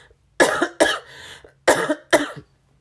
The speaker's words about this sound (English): Pardon me, I'm going to cough.